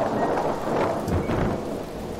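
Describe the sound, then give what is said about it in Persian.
Steady rain pours down in a dense, continuous hiss with a low rumble beneath, fairly loud throughout, with no voices. “در خواب باران گرفت”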